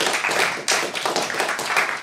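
A brief round of applause: several people clapping together in a dense, rapid, fairly loud patter that stays steady for about two seconds, with no talking over it.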